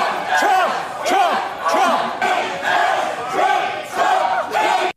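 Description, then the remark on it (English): A crowd of counter-protesters inside a Publix store screams and yells loudly in rhythmic surges, about one swelling shout per second, repeatedly chanting "Trump" with strained, high-pitched voices during a student protest. “What are you screaming Trump for?”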